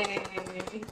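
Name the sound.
applause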